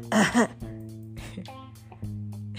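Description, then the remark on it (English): A loud throat clearing in two quick rasping pushes at the start, then quiet with only a faint steady background hum and a few soft clicks. “Let me clear my throat.”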